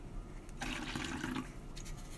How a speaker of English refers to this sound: Pour that drink.